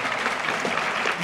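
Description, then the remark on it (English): A short burst of steady applause, many hands clapping in a dense, even patter at a fairly loud level throughout. “Big round of applause for you learners.”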